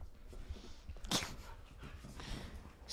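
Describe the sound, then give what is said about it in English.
A dog whimpers and lets out a sharp bark partway through, followed by softer whining noises; the sounds are fairly faint, with no one talking. “If you're interested in getting a dog that will behave this well while you're recording a podcast”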